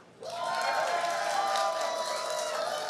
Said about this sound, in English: I'm going to put my hand over these guys. You guys clap.